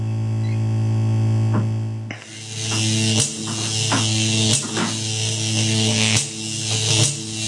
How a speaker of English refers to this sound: Uh-oh. That doesn't sound good. It's making a buzzing noise.